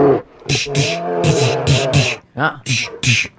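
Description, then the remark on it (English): A person imitates a bear roaring, a series of loud growling bursts with raspy breathy edges, broken by short pauses over a few seconds. “He meant business because the bear roared.”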